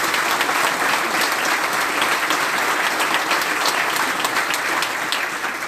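An audience at a hospice claps in a steady, dense round of applause for the sponsors McNulty Furniture and Ballinlock Refrigeration. The applause holds at an even, fairly loud level for several seconds, with many overlapping sharp hand claps and no talk over it.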